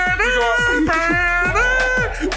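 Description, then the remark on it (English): A voice imitates a European two-tone police siren, holding sustained, alternating high and low notes in a steady repeating pattern, fairly loud. “You see the Euro cop cars like,”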